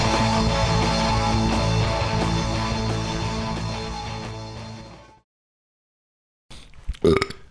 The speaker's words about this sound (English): It's my turn. And with that burp, we're back.